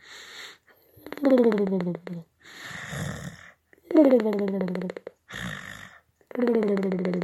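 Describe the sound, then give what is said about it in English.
A person imitates the gentle snoring of someone sleeping in a sling, three slow cycles of a breathy, rasping inhale followed by a low, voiced, droning exhale that sags in pitch, steady and rhythmic with no other talk. “Bunny was gently snoring in his sling proximitous to mine, somewhat thusly.”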